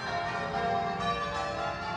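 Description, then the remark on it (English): Church bells ring continuously as a call to worship signalling the start of church. Their overlapping metallic tones blend into a dense, steady peal with no pauses. The sound is fairly full and sustained, with no voices present. “Ringing the bells is a call to worship and signals the start of church.”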